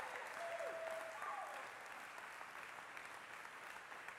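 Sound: audience cheering and applause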